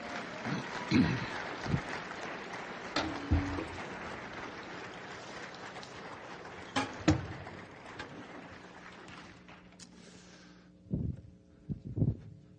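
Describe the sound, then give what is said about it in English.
An audience claps for a group of women in a steady, dense wash of applause for about ten seconds before it dies away, leaving a few scattered low thumps and faint noises near the end. “Give them a round of applause again.”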